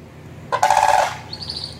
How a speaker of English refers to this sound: Here is the real one. Here's the real bird sound.